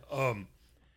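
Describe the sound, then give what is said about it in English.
A person gives a short, theatrical voiced gasp, a sharp rising vocal burst lasting under half a second, fairly loud, then quiet follows. “And it is about a young man named Oliver Quick, and the minute they tell you his name, you think to yourself, you hear Patricia Highsmith gasping.”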